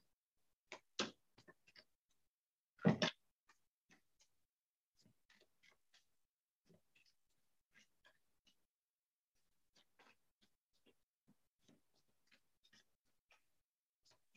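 Glossy playing cards being shuffled: a few sharp riffling bursts early on, the loudest around three seconds, followed by scattered light clicks and taps as the cards are handled. The glossy cards are somewhat sticky, making them hard to shuffle.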